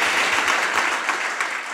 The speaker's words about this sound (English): But a round of applause for these fine gentlemen.